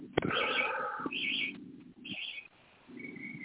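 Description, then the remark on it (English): Birds chirp and twitter in repeated bursts over a few seconds, fairly clear, with a soft, low cooing-like murmur underneath and no talking. “I lost a little bit because it sounds like there's birds out there chirping away.”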